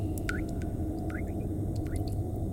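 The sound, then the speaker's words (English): A faucet drips steadily, three distinct plinking drops falling at even intervals, each with a quick ringing pitch bend, over a constant low background hum. “The faucet's dripping.”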